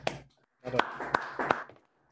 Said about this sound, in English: That's real talk. Clap that up, y'all.